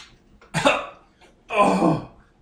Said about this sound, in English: you hear coughing from behind the couch.